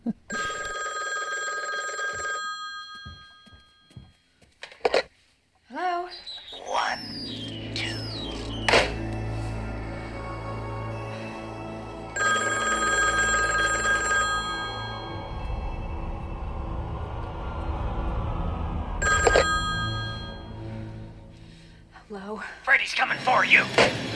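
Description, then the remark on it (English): A telephone rings in repeated bursts, a bright electronic trill that cuts in and out several times, with low rumbling and clunking handling noises in between. “Just like, calling up, seeing what's good, seeing if the lady picks up.”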